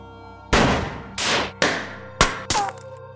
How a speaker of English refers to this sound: I've isolated these sounds from Coco's crime scene. Listen to these gunshots.